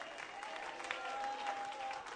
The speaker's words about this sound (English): Won't you clap your hands? That's what it sounds like. Oh, come on, you need to clap them.